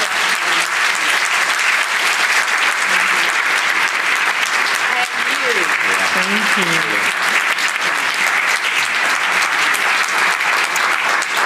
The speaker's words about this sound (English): Can you all give an enormous round of applause?